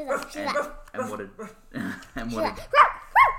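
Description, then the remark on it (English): A voice imitates a dog, yapping and barking in a run of short, high, harmonic yelps that rise and fall, ending with two louder, sharp bark sounds, clear; it is the character Bingo barking before asking Daddy for money. “Bingo was asking Daddy for money, but before she said that, she was like just barking.”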